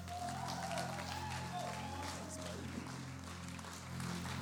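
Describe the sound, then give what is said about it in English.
A church audience claps and cheers in a dense, steady wash of applause that holds an even loudness for several seconds, with a low, constant hum running beneath it. “Why don't you make some noise”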